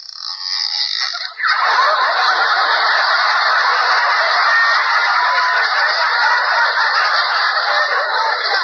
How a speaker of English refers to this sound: Darn it, I'm too late. I heard a door open. That was your knee.